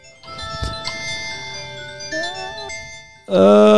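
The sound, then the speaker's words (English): As a prize wheel is spun, a bright, tinkly electronic jingle plays a steady tonal melody with sustained harmonic notes, then swells into a louder, brassy burst near the end. “So I will go first, spinning the wheel. Should get some music going on that.”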